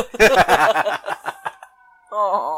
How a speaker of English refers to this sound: Some sirens.